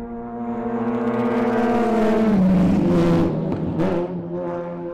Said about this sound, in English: Success, in this case, is driving the car at a consistent average speed of almost 100 miles an hour.